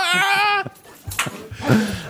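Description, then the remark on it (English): A white woman lets out a loud, high-pitched scream that holds for about half a second and cuts off abruptly, followed by scattered muffled thumps and rustling. “That scream was the death of white privilege.”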